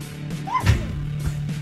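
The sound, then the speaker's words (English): A single short, squeaky sneeze caused by dust in the nose: a thin high-pitched upward squeal snapping into a brief breathy burst, over a steady low hum with no talking. “Did you just hear that squeak? That squeaky sneeze?”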